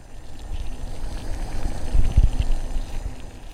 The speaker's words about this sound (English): Disclaimer. I think there's a vacuum thing going outside, so if anyone hears it, I'm sorry.